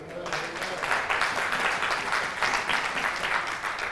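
A church audience breaks into sustained applause for the 16 Deadly Deeds sermon series, many hands clapping together in a dense, steady wash that stays fairly loud throughout.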